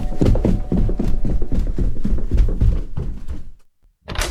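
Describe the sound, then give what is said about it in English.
Heavy stomping footsteps thud in a rapid, uneven run of loud, low impacts for several seconds, then stop abruptly before one more heavy thump. “He's really stompy.”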